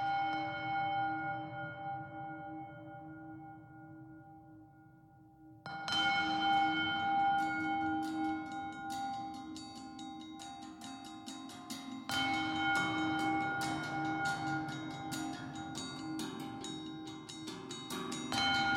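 Metallic struck bowls in a video game score, tied to the game's island, ring out with long, bright, shimmering tones, starting with one sustained strike, then a dense flurry of rapid, overlapping hits that keep banging away throughout, with no one talking.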